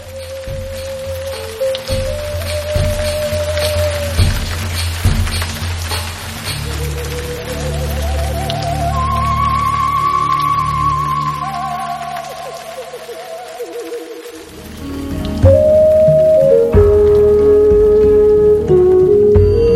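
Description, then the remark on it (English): Steady rain falls throughout, a continuous hiss beneath sustained droning tones that rise and shift, with a brief dip in the low rumble near the end before it swells back. “Just the constant rain and Oprah whispering in his ear.”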